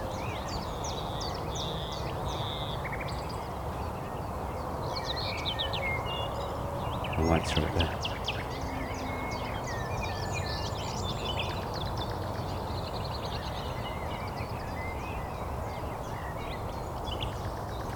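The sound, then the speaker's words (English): A nightingale sings continuously with strident, varied chirps and rapid trills over a steady background hiss, a sharp click cutting through midway and a voice murmuring briefly. “These strident calls of the nightingale.”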